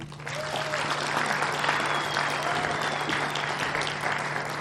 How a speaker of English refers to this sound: So please have a round of applause